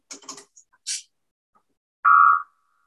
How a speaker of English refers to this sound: So I'm going to have you listen to the Third Eye tones.